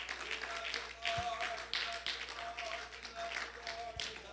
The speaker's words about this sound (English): In the precious name of Jesus, clap your hands unto the Lord one more time.